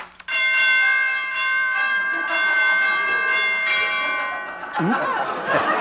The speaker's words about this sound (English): Door chimes need tuning.